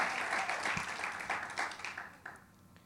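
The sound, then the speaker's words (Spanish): A crowd breaks into sustained applause for God, dense overlapping claps at steady volume before gradually thinning out toward the end. “Denle un aplauso fuerte a Dios por eso, porque si la protección de Dios está, nadie va a temer.”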